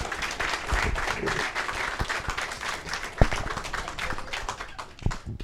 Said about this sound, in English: How about a warm round of applause for Woody Williams?